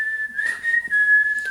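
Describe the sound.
A man whistles an eerie, sustained melody while walking, the clear tone holding steady pitches with slight wavering and brief shifts between notes, with faint background noise underneath.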